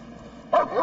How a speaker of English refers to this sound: The dog barked its signal for clear, but McClung and the backup officer had to be sure. There was no one inside.